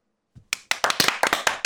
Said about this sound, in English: There we go. I want to be the last one applauding.